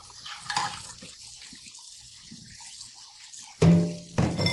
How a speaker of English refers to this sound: Are you doing dishes?